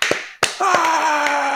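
A few sharp, scattered hand claps, then a loud sustained whooping cheer that slowly falls in pitch while occasional claps continue beneath it.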